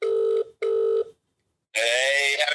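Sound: telephone dialing tones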